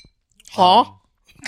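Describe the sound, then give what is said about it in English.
A person makes one short, loud, warbling bird-like call with their voice, a high wavering tone lasting about half a second, followed by faint rustling. “What kind of bird sound is that?”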